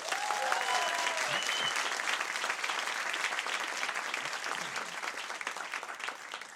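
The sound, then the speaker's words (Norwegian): Steady applause from a crowd for the day's guest, a biologist and expert on bodily fluids: dense clapping that holds loud and even before easing slightly toward the end, with a few faint whistles early on. “og en stor applaus til dagens gjest og ekspert på kroppsvæsker, biolog”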